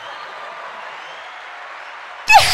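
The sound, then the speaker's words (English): A steady wash of recorded applause played from a mixing board, many hands clapping in a dense, even hiss at moderate volume, ending in a sudden loud burst at the close. “Sorry, we don't know our mixing board very well, but I wanted to find the clapping thing.”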